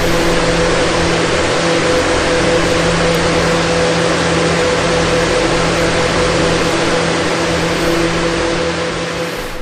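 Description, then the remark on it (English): An electric fan whirs steadily with a constant airy rush and a low, droning motor hum, holding an even, loud level throughout before easing slightly at the very end; from a CD of fan sounds, the Front Porch in the Summertime Fan. “There are 68 minutes of fan sounds on that CD.”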